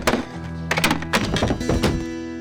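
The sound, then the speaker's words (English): A body thuds heavily onto the floor as a man sits down forcibly and misses the chair entirely, followed by a few more dull, bumping impacts spread over a couple of seconds, with a low steady hum underneath and no voices. “To make his point, Colum forcibly sat down, but missed the chair entirely.”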